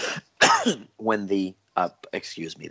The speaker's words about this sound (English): The more I talk, the more I'm going to have a cough. So I apologize.